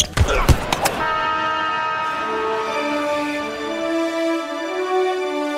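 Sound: train whistle sound effect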